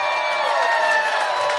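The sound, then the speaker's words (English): A large crowd cheers and shouts continuously in the 2,000-seat arena in the Crow's Nest on the JoCo Cruise 2017, a dense wash of many voices filling the space at steady volume for the whole short stretch, with a few higher whoops poking through. “What a weird extra cheer we just got.”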